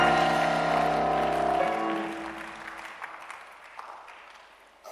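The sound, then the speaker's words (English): An audience claps in a scattered, uneven patter at moderate loudness. A sustained keyboard chord rings at first, then fades and leaves the clapping on its own. “Anybody clapping, that is your blessing in the name of Jesus.”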